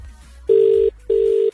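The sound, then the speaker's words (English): A telephone ringback tone heard over a call line: two steady, buzzy tone bursts with a short pause between them, clear and fairly loud, with no one speaking. “It's ringing this time.”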